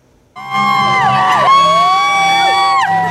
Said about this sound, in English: 17 years of screaming at the Merritt Mountain Music Festival